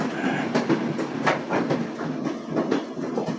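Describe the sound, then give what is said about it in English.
A train rolls along railroad tracks nearby, its wheels beating out a steady, rhythmic clickety-clack over a continuous rumbling roar. No one speaks. “I also moved over here next to the train tracks.”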